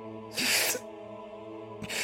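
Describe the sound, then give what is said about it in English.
A man gasps sharply in pain as a blade passes through his wrist, a loud breathy intake followed a second later by another starting gasp, over a low, steady droning hum. “Father O'Malley gasped as the final blade passed through his right wrist.”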